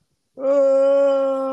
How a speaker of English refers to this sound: Oh, I'm going to get one more yawn in.